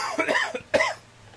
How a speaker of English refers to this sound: Oh, COVID, hold on. COVID cough.